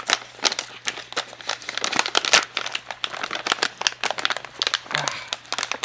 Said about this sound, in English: Can't get it open. The granola is trapped inside. I'm really fighting this thing.